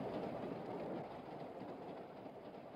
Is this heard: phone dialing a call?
no